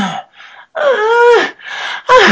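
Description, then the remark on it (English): A cow's breathy, lost-sounding mew calls: several short cries in a row, the longest a clear tonal mew with a slightly falling pitch, the others hoarser and airier, with no voices. “And this cow at the end, again, she's mostly doing lost mews, but she's adding those, what I call, you can add, say, a demanding mew, or she can say a frustrating whine”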